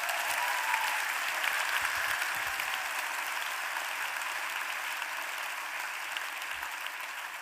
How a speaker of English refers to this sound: I'm honored to welcome Colson Whitehead, ladies and gentlemen. Applaud him.